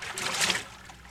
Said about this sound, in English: Those are waves caressing the shores of Mallorca, the most romantic island in the Mediterranean.